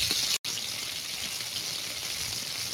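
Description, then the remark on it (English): Steady, dense sizzling hiss of bacon frying in a pan, bright and crackly with constant high-pitched spitting, briefly cutting out for a split second before continuing evenly. No voices. “You're right, Bob. It is meat sizzling.”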